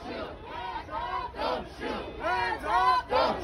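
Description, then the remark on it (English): A large protest crowd marching on the 35W highway near University Avenue chants in loud, rhythmic bursts, many voices shouting together in a steady beat about twice per second, with no single speaker rising above the mass of voices. “Protesters have filled the city, have filled the bridge. They're on the street.”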